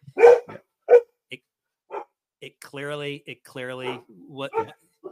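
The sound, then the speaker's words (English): Dogs bark, starting with two sharp, loud barks followed by a series of longer, more drawn-out and tonal barks and yelps, with brief gaps between them. “I told you at some point my dogs would bark, right?”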